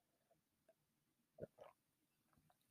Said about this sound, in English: I hope you can hear me swallowing chocolate milk. That was kind of a nasty noise.